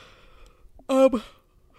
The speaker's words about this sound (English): Yawn break. Yeah, yawn break.